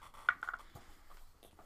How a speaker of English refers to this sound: What has just happened is the classic blunder. Nate has dropped his dice. I landed on 6, too.